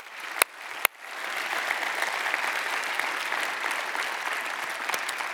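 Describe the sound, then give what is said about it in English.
An audience bursts into sustained applause for those who have served, starting with a couple of sharp isolated claps before swelling into a steady, dense wash of clapping that holds evenly for several seconds. “But would all of us gather here tonight, would you just give me a round of applause for those that have served and said thank you?”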